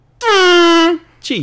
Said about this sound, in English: So, that was a good fucking air horn, dude.